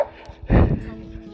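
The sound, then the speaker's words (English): A dog lets out a single loud, sharp bark in the morning, an excited burst at another dog, ending quickly against a quiet, faintly humming background. “Rooney gets pretty excited around any other dog.”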